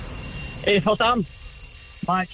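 A quiz time-up buzzer sounds in a quick run of three bright electronic blasts, then one more after a short pause, loud over a faint background hum.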